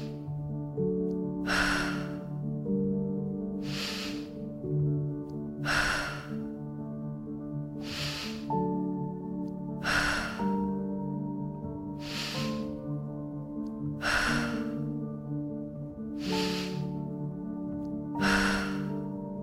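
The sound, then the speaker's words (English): Loud, rhythmic breaths rush in and out at a steady pace, about ten strong bursts two seconds apart, over a sustained, humming musical backdrop with no talking. “In, out, in, out, breathing in, breathing out.”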